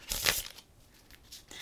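A loud, papery riffle of a deck of tarot cards being shuffled, followed by a few softer flicking rustles, with no voices.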